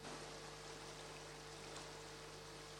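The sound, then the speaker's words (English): Floodwater from a river that overflowed its banks after rains gushes across the main road at a cut-off point in Abamfu, in a steady, unbroken roar, a dense wash of rushing water holding constant for the whole stretch with no voices, accompanied by a faint low hum. “Sounds of gushing water at the cut-off point here at Abamfu.”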